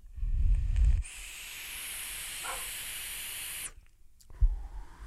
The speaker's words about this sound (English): Now, tell me, it's a good thing this isn't for sale anymore, because that is a whistle. I mean, that is an undeniable whistle.